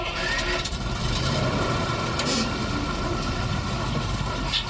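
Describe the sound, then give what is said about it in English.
A bus engine idles with a steady, low rumble that stays constant and fairly loud, as if heard from inside the vehicle, with no clear speech over it. “As I turned toward the back of the bus, I nearly tripped on the driver's feet and noticed that they were inordinately immense.”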